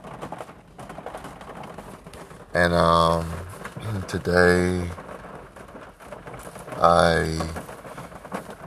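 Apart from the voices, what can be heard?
rain falling outside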